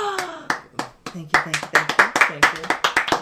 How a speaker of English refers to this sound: Thank you. That's the Holy Spirit clapping, by the way. Yeah. Holy Spirit's got a lot of hands.